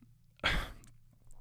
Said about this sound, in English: Oh no, I'm yawning.